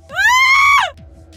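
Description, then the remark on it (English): A single loud, high-pitched scream from a girl engulfed by fire at a wooden stake rises and holds steady for most of a second before breaking downward, with a low rumbling hum beneath it and no talking. “The fire is now engulfed young Clara, and she is screaming.”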